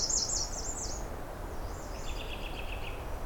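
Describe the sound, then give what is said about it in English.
Faint, distant songbird phrases of high, thin warbling notes, a Nashville warbler, drifting over steady low background rumble, with a second quieter series of rapid high notes later. “I'm hearing some Nashville warblers a little further off.”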